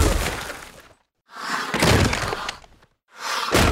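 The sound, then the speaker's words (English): Three bursts of broad, rushing whooshes, each swelling and carrying sharp plastic clacks and thuds, separated by brief silences. The final burst ends on a hard, bright hit. No one speaks. “You see how much the actual whooshing and the plastic comes through on those.”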